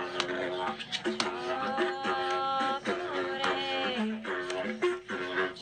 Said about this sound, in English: The didgeridoo is a very haunting. Listen to it.